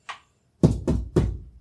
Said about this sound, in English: The incessant knocking on my door, pounding like a drum.